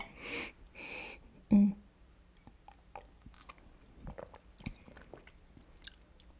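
sipping a drink

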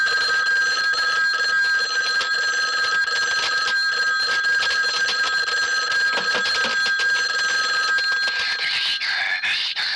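telephone ringing

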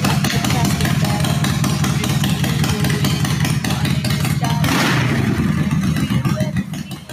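engine revving

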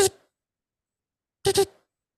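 alarm clock going off

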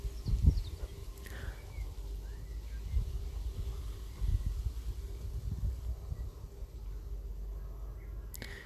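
birds singing outdoors

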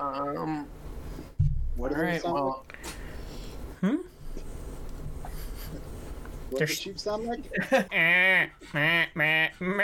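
sheep bleating

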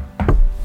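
knocking

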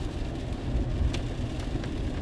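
rain falling

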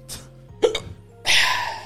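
hiccup

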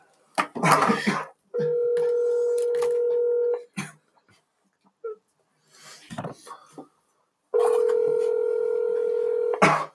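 outgoing phone call ringing

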